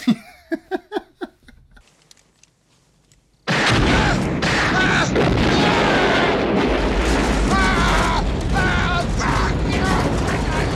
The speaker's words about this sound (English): Be a bit more respectful, because otherwise they might pull out a gun and blow your fucking truck up.